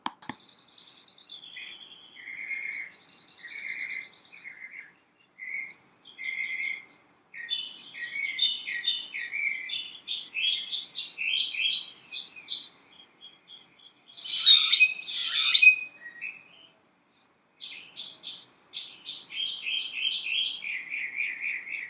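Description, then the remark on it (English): Birds chirp and sing outdoors in Scottsdale, Arizona, in a steady, overlapping chorus of bright, high-pitched phrases, with a few louder, busier bursts partway through. Clear, with no talking. “These are the sounds of the birds in Scottsdale, Arizona.”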